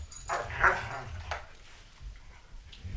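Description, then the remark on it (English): A dog in a dog playroom gives a sharp bark followed by a few quieter yips and whimpers, over a low rumbling background. “I'm in the dog pound, which is our dog playroom, because today's subject is dogs.”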